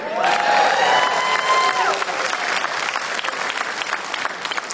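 A crowd of Packers fans applauds and cheers, with high-pitched whoops and shouts over steady clapping at first, then the voices fade, leaving dense, crackling applause that tapers slightly toward the end.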